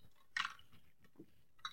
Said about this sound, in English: Sorry, guys. My mouth is just parched. I just got to drink some of this water. It's water. It's got one of those little Mio squirts in it, a little raspberry lemonade, dude. It's fucking delicious. A couple cubes of ice, fucking ice cold water.